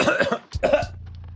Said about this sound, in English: Oh, I think the throat clear does it. Yeah, I think that's what it is. Must be like reset the vocal effect.